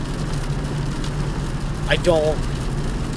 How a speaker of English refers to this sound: I keep slipping. It's raining a lot. And I physically... I felt much more safe at other times while driving than I do right now.